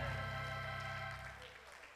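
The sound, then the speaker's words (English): An audience claps along in a steady wash of applause over sustained organ-like music, loud at first and gradually fading over the two seconds. “Clap your hands in your life.”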